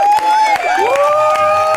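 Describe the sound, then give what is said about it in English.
An audience bursts into cheering, with loud whistles and whoops rising and sliding over scattered clapping, steady throughout the short burst. “Round of applause”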